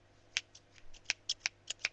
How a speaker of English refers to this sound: Are you really cutting your hair right now? I'm just cutting off my split ends. Shut up. Why did you have to say that out loud? Because they'll hear the scissors noise.